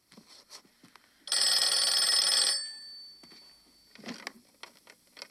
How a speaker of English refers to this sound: And, yeah, so this is where we get the phone call from Dr. Raymond to Norman. All right. Here's a clip.